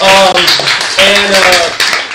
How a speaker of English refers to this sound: man, this is a lot of people in the house. So, anyway, y'all can clap. Y'all can clap.